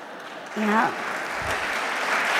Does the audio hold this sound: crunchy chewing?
no